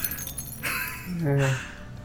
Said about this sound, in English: His glass starts to shake. Mm-hmm. And then it shatters.